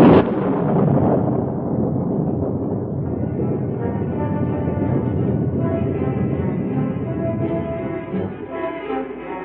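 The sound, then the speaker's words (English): A loud, sustained rumble of thunder rolls on without letup, deep, with a steady storm roar underneath and a faint whistling edge as it slowly eases, during a rainstorm at night. “Without hat or coat, unafraid of the storm, Sue ran into the night”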